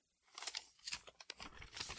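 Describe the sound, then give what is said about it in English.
Paper is crumpled and crinkled in someone's hands, a steady run of irregular crackling bursts lasting a couple of seconds, with no voices. “Somehow, when I have a piece of paper in my hands, the dream fades into something that might have been on the television.”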